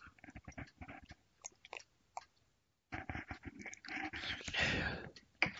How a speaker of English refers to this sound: Another sip, hold on.